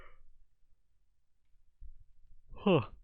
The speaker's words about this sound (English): It is too early to be yawning.